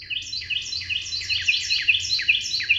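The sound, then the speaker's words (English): A Carolina wren sings a loud, rapid series of repeated ringing phrases, each a quick rolling chirp, over a low background hum, with no voices present. “When a Carolina wren tips back its head and sings, something remarkable happens.”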